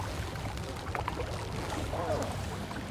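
Untreated toxic chemical waste from factories gushes steadily from a major pipe outlet straight into a river, a continuous rushing and splashing with a low rumble underneath, holding an even level throughout.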